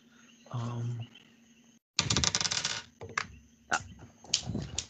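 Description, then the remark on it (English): Dice clatter across a table, rolled for damage against a baby Gorgon in a tabletop game: a dense burst of rapid rattling clicks, then a few separate sharp taps as they settle. A brief murmured voice comes just before. “Now I'm gonna roll for damage.”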